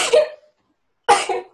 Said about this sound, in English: Hold on, I have to sneeze.